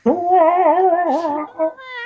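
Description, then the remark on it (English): A person does a drawn-out, wavering imitation of a sick cat's meow, a nasal, whiny tone that rises and dips for about a second and a half, then ends in a brief higher squeak. “I'm glad you could be a sick cat.”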